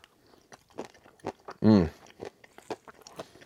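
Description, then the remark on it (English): A crisp bite into a crunchy homemade high-protein, high-calorie bar, followed by a steady series of crackling chews, with a brief voiced hum in the middle. “Delicious, sweet, a little bit salty. Got a good crunch to it.”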